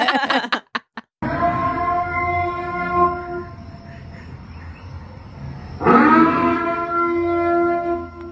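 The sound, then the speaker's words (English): A loud, wailing civil-defense-style warning siren, the Purge siren played from a car driving around, blares in a long sustained tone, swells again near the end, and follows a few short choppy bursts at the start. No one speaks. “Someone drove around playing the Purge siren, which is pretty hilarious.”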